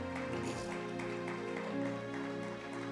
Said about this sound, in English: Now give God a hand clap of praise. Isn't he worthy?